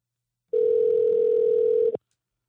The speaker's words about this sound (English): I'm going to call him now. Let's get him on the phone.